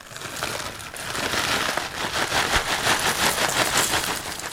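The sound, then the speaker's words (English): Potato chips being poured, a dense, continuous crackly rattle of many tiny crisp clicks that builds over the first second and then holds steady and fairly loud, with no talking. “I was pouring chips and recording it, so it fell off onto my lap.”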